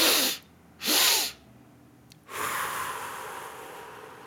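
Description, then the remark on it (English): A calming breathing technique: two quick, sharp sniffs through the nose, a short pause, then one long, steady breath blown out through the mouth that slowly fades. No one speaks. “So it goes like this: it's two inhales through the nose and one long exhale through the mouth.”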